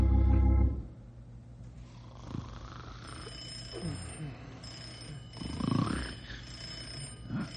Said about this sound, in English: Yeah, I'll get the phone.